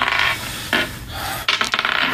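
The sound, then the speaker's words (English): Dice rattle and tumble across a table as they are rolled for initiative, starting with a scraping roll, then a second burst, and ending in a quick series of sharp clacks as they bounce to a stop. “And why can't I roll a goddamn number three?”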